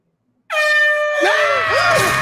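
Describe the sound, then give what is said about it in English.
A loud air horn blast erupts after a brief silence, holding a harsh, steady multi-tone blare that wavers and bends in pitch toward the end. “Was the air horn really necessary?”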